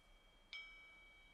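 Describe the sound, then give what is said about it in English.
A handmade metal object is struck once, giving a soft, clear bell-like ding whose high, steady tones ring on and slowly fade. It is quiet, with no voices. “I didn't design it as a bell, but eventually it became, yeah, it becomes something.”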